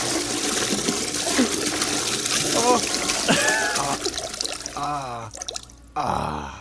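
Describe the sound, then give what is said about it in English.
A steady stream of urine trickles and splashes into water for several seconds, with brief muffled vocal sounds over it before it breaks off near the end. “Why does the fart unleash the pee?”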